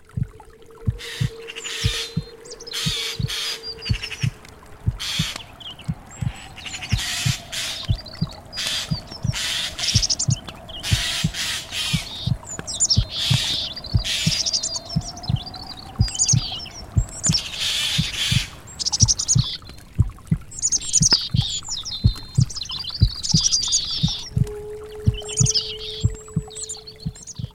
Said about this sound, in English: And then, of course, like, all sorts of nature sounds. And so we had a heartbeat going throughout. And we had the sound of the Rio Grande, or Rio Grande River.